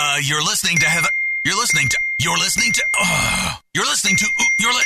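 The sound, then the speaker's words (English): A steady, high-pitched electronic tone from a radio host's phone ringing during a live show on Laser 103.3, sounding beneath continuous voices that fill nearly the whole stretch. “can you please silence your phone for one friggin' minute so I can get this done?”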